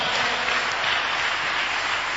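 An audience claps together during a church sermon, giving a mighty clap to the Lord: a dense, steady wash of many hands that fills the whole clip at a loud, even level with no voices on top.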